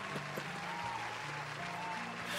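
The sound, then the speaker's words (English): Arena crowd applause: a dense, steady roar of clapping that holds at an even loudness for a couple of seconds, with wordless crowd voices and low tonal notes rising and falling underneath. “You got the crowd going on that one”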